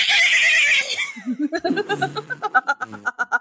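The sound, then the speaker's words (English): A person imitates the bleat of a sea goat, a goat underwater, with a gargly, wavering voice, starting with a hissy, breathy burst, then a rapid stuttering series of nasal, pulsing bleats, fairly loud, with laughter mixed in. “I want you guys to make what you think the sound of a seagoat would sound like.”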